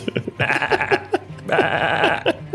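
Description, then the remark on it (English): Two drawn-out, wavering sheep bleats, the first broken into quick trembling pulses and the second longer and fuller, with no talking. “So that first angel turns into the cutest sheep that you have ever seen. And it just kind of is, you know, mewling over there.”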